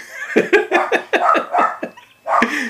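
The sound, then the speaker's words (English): Two dogs make a rapid run of sharp, yappy barks and whining yelps, about seven bursts in quick succession, a short pause, then one more loud yelp. “There's those crazy dogs that I was talking about.”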